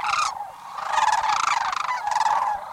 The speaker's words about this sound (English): In the rosy glow of a sunrise on a southwestern marsh, a pair of sandhill cranes calls in unison. With a graceful leap, wings outstretched, the two cranes welcome the last days of February.